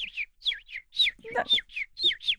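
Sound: person imitating bird chirping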